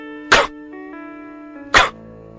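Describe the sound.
A voice imitates a male antelope's alarm bark from the sagebrush, two sharp, cough-like bursts about a second and a half apart, loud, over a steady faint tonal hum.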